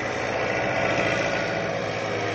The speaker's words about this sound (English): and soon all of the latest logging equipment is in action. Giant diesel cats and wheeled log rollers maneuver around to pick up their loads or carry off what they've already loaded on.